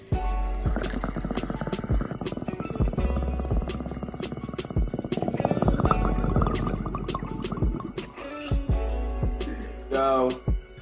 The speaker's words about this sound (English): Y'all hear the bubbles? Uh-huh. Y'all know what it is. I wasn't even going to bring the bubbles out today, but then it just made sense.